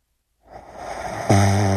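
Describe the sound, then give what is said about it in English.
A woman snoring: a breathy, rasping intake swells for about a second, then breaks into a loud, low, buzzing rattle that holds steady to the end. No talking. “So there's no difference between a man and a woman snoring.”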